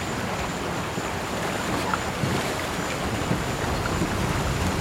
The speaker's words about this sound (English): what is that? Oh no! It's a waterfall! Quick, pull this way. We've got to get off the river.